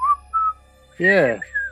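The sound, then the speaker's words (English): A person whistles a short, halting tune: a couple of thin whistled notes, a brief voiced hum in the middle, then one last higher whistle, fairly quiet. “Whatever, I can't whistle.”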